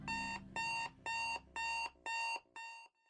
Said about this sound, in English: And your alarm clock is blaring at high volume on your nightstand.